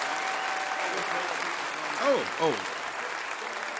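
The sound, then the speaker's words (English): Steady crowd applause, a dense, even patter of clapping, with two short swooping cheers or whoops rising over it midway through, as a live music audience applauds the band's banjo player after he is introduced on stage. “Give it up for Andy Thorne on the bow and the five string.”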